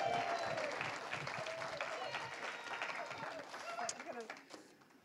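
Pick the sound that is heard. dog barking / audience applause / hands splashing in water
audience applause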